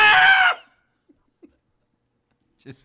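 A loud, shrill scream from someone in the background bursts out for about half a second, then cuts off into near silence with a couple of faint clicks and a short vocal sound at the end.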